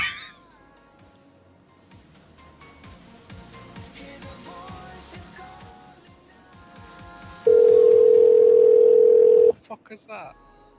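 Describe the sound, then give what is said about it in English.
A phone call ringing tone sounds once as a loud, steady two-second beep after a long quiet gap of faint background noise between rings. Brief meow-like cries come at the start and end. “Still ringing. Jesus Christ. Why is there such a big delay when it rings, though?”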